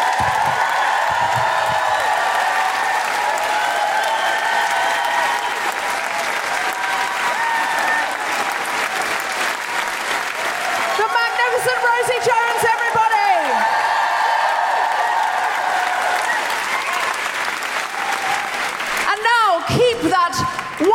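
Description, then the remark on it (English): A crowd applauds loudly and steadily for about twenty seconds for Paul Sinha, with shrill whoops and cheers rising out of the clapping midway and again near the end. “Warm, guilty feminist Amnesty International applause going for the fantastic Paul Sinha!”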